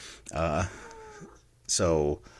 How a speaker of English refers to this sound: But that means for the next 4 episodes, you're probably going to get a guest cat, depending if she wants to meow while I'm recording.